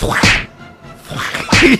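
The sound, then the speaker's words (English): Two sharp thwacking hits about a second apart, fairly loud, apparently voiced by a person imitating the sound of Batman punching a tiny foam Mako shark in a movie rather than real impacts. “I love the sounds it made when Batman was punching it. Thwacks.”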